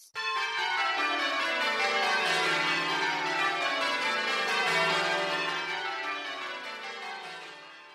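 Several church bells ring together in a continuous, overlapping peal, their rich harmonic tones sustained and layered at steady loudness before gradually easing toward the end. No voices are heard.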